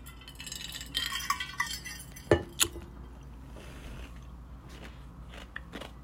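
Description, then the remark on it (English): Crunching of ice cubes being chewed by a person after a sip of water, with a few sharp clinks of ice against a glass in the middle, then quieter intermittent crunches. No one speaks. “And yes, I'm an ice chewer, so I'm so sorry about that.”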